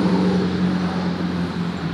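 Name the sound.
truck driving past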